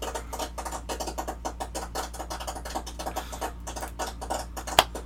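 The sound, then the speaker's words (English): A sound effect of a very small crowd clapping: thin, scattered, irregular claps that sound a bit like popping popcorn, steady at a modest level for about five seconds with one sharper clap near the end. “It said a very small crowd clapping.”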